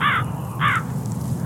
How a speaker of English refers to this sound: Oh, what is it? Is it a crow? Is that a crow? What is he? The crow must know where water is.